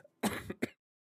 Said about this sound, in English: Apologies for that. I just had to have a little a little cough there. Deary me. I'm having a bit of a mare here. Something's tickling in the back of my throat.